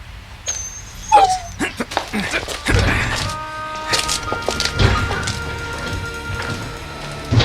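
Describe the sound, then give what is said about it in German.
A dog, Oskar, barks on command outside a studio building, repeatedly in short, sharp bursts, mixed with high yips and a whining note, keeping up an uneven, excited rhythm for several seconds over a steady background hum. “Auf Kommando begann Oskar zu bellen und hörte nicht mehr damit auf.”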